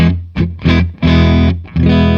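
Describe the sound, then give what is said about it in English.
A Telecaster electric guitar with a roasted maple neck, played with a clean, dry tone, strums a few short chords, each ringing briefly before the next, ending on a sustained chord. No one speaks. “All right, so here's our clean tone.”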